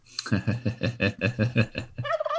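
A turkey gobbles loudly, a fast rattling burst of about a dozen warbling pulses, ending with a brief, higher-pitched call.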